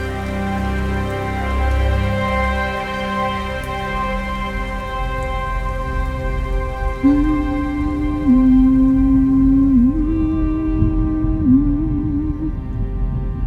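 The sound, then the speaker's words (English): A steady rainstorm hisses throughout, with a low rumble in the first few seconds and a wavering, moaning low tone rising over the rain in the second half. “Crazy storm.”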